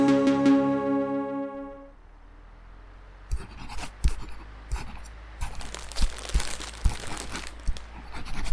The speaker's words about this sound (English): If you write any faster, that paper's gonna catch fire.